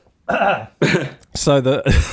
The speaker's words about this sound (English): Please excuse me while I just cough.